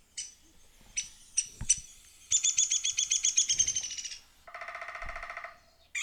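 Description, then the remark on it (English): A woodpecker sound effect: a few sharp chirps, then a loud, rapid, high-pitched trill that drops into a lower, quicker rattling call, close and clear, with no talking. “It's a woodpecker noise.”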